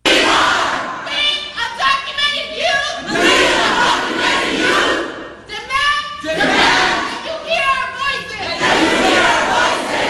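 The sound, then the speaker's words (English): A protest crowd screams and yells at Nancy Pelosi in loud, overlapping waves, with strained high-pitched voices shouting together and surging repeatedly across the whole stretch without pause. “Now here's more of them screaming.”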